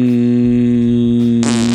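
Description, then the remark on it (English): A loud, sustained buzzing fart with a steady low drone, ending in a sudden hissy, breathy burst. No talking over it. “I'm farting at the end of these, dude.”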